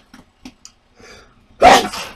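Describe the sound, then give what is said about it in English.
A few soft sharp breaths and a faint inhale build up before one loud, explosive sneeze bursts out near the end. “Oh my gosh, gonna sneeze.”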